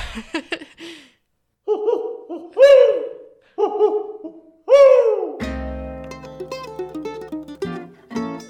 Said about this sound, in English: One more time, though. The owl is loose. Watch out.